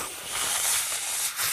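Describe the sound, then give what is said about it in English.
A breathy rush of air blown through pursed lips by an adult trying to learn to whistle over the phone, a failed whistle with no clear tone, just steady hissing noise that swells slightly and dips briefly near the end. “Do you hear that? It's just air. How do people make it sound musical?”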